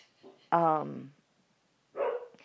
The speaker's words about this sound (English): Oh, there's the dog. Special guest Cooper.